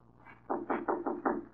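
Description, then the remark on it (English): A prisoner gives five firm knocks on the door of the warden's office at San Quentin prison, in a quick, even rhythm, each a dull, solid thud, with no voices around them. “When a prisoner knocked on the door of the warden's office.”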